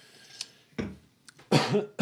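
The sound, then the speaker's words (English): A person coughs: a short sharp cough, a pause with a faint catch, then a louder, rougher, drawn-out cough. No one speaks. “You had to stop and cough it out.”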